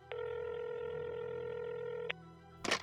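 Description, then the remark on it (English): A single steady electronic telephone ring tone sounds for about two seconds, clear, then stops; a brief click or clunk follows a moment later. No one speaks. “let the phone ring half a ring before he hung up. Then he called back.”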